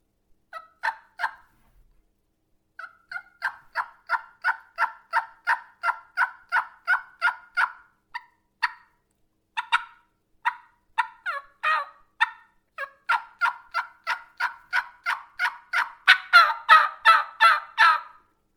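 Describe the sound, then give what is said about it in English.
Repeated series of plain turkey hen yelps made with a mouth call, the first ones higher-pitched: steady, rhythmic runs of raspy notes with brief pauses between sequences, loud, no talking. “So if you look close to my mouth, the first hen yelp I'm doing is higher pitch, and it's really just a plain hen yelp.”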